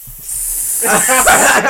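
A loud sizzling hiss swells in after a brief quiet start and holds steady for over a second, bright, with a rougher tonal buzz woven through its middle.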